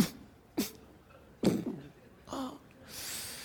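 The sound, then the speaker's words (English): A person gives three short, strained coughs spaced about a second apart, fairly loud, followed by a long breathy exhale, acting out the painful cough after open-heart surgery, when the sternum slips. “And so it kind of slips a little bit. It's like, and then you have to cough.”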